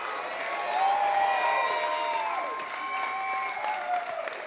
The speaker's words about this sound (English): Let's hear a round of applause if you think he looks better.